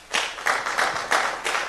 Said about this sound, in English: I mean, all of y'all are just fantastic. Give yourself a hand clap.